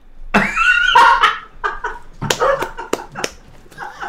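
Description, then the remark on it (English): A female puppy lets out a run of short, sharp yaps mixed with high, whiny whimpers, irregular bursts across a few seconds with no one talking. “Pepper's coming too. The puppy's coming. Hopefully, she's not too loud.”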